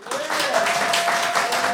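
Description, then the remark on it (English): An audience applauds to vote on whether a story still stands, in a dense, steady burst of clapping that holds at an even loudness, with crowd voices and cheering mixed in underneath. “If you think that their story still stands, applaud for them.”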